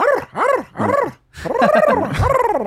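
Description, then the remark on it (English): A person vocally imitates a stray dog in Mexico barking: three quick, arching yelps, a short pause, then a longer, wavering run of howly barks, loud. “Stray dogs in Mexico sound more like a”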